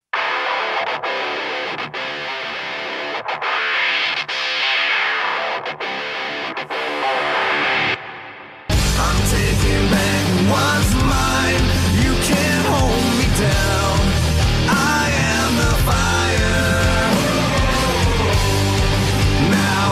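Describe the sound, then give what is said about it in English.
A wrestler's rock entrance theme opens with sparse, evenly spaced hits and a rising sweep, then slams into loud, dense distorted guitars and drums about halfway through, carrying on at full volume. “And his most recent theme that he had right before Honor No More is the one we'll talk about here.”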